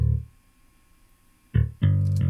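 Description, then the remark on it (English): A distorted bass guitar, played with the same settings as a previous bass, plays a few low, gritty notes with a growling edge: one note fades out, then after a pause two more are struck loudly in quick succession. “Has more growl in it and distortion.”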